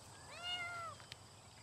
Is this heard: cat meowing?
yes